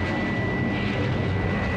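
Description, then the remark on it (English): A robot jet plane roars at supersonic speed in a chase through the skies over New York, a loud, unbroken rushing drone with a thin steady whine riding on top, constant throughout with no voices. “Faster, robot plane.”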